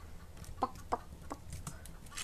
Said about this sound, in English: Someone turned to a chicken. Hey, why am I a chicken?